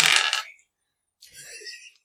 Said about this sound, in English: My turn's not done, because now I gotta take a couple dice, take a player's handbook, and roll for wild magic.